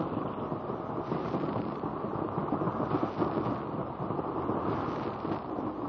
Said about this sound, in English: The rushing of the waters echoes and reverberates from the rocky walls with a noise like thunder.